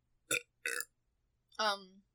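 Two short, throaty bursts followed by a longer, drawn-out belch with a buzzing, falling tone, against a quiet background.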